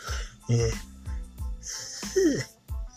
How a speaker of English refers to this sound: Boy, oh boy, yawning.